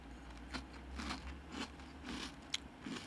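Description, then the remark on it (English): Crunching as someone chews a crispy wheat-free protein snack with peanut butter flavor, made with a milk protein blend; about six soft, irregular crunches over a few seconds, with a low steady hum underneath and no talking. “So I'm getting the crunch is very unusual.”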